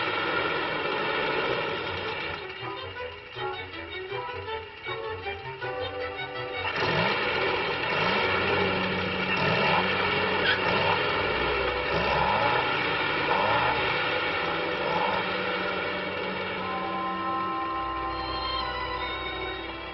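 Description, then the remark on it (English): An old Jeep, Nellie Bell, sputters and chugs with a loud, steady rumbling drone, broken by irregular sharp pops like backfires. No one speaks. “Now backfire, Nellie Bell. Backfire, you lump of tin!”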